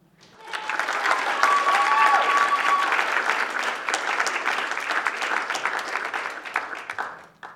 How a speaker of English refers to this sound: we are cheering you on. Way to go.